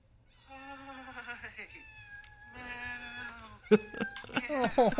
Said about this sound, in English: She sounds so pathetic! She does the sad meows. And she's under the desk right now. She has not left my side. The yelling went on for 10 or 15 minutes.